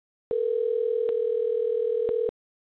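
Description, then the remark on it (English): A steady telephone dial tone hums for about two seconds, clear, with a couple of brief clicks breaking it before it cuts off into silence, during an attempt to reconnect a dropped phone call. “If not, we'll just kind of wrap this up here and call it a day because we're having a lot of phone trouble with them. So let's try getting him one more time.”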